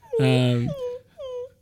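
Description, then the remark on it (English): A person imitates a whimpering bird puppy: a strained, nasal whine followed by two shorter, high, falling whimpers, fairly loud, with no words. “Is that what birds sound like to you? It's a bird puppy.”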